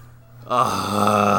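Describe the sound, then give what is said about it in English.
After a quiet low hum, a voice launches into a loud, raspy, rumbling snore, a growly imitation of a sleeping lion held steadily for about a second. “Guys, the lion is sleeping tonight, but he's also snoring.”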